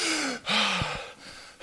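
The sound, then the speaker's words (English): A voice imitates a sudden gasping breath, as of the apostle John starting to breathe again: a few harsh, airy inhales and exhales in quick succession, fairly loud, with short pauses between them. “About that time, John started breathing.”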